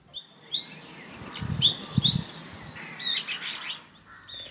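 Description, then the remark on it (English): Several small birds chirp and twitter in quick, bright bursts over a soft outdoor background, with a low rumble midway; the calls are repeated throughout. Winter birdsong on Walmead Farm, where bramblings, chaffinches, yellowhammers and skylarks are found. “And then we finish with birds on Walmead Farm.”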